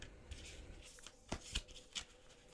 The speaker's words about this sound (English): All right, and second oracle card reading will be from the Starseed Oracle deck. And I will just give the cards a shuffle.